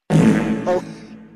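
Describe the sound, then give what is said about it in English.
A single loud fart sound effect played from a soundboard, a buzzy, flapping burst about a second long that swells briefly near its end before trailing off, with no voices. “Imagine you're on national TV and you feel a fart coming and you let it out.”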